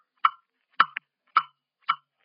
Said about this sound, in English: Ticking. Stop ticking. I hear you, blasted clock. I hear you.